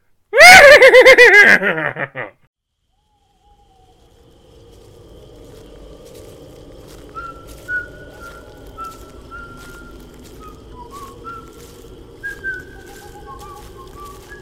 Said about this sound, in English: Stop whistling.